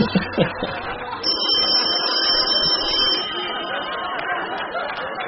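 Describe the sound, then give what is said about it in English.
A telephone rings with a single sustained, high-pitched electronic tone lasting about two seconds, heard over a steady murmur of background chatter. “Oh, there it is. The old familiar ring.”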